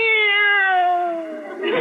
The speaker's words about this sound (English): Meow. This cat is dog happy. I think she'd even respond to a dog she'd never heard of before, like Bowser.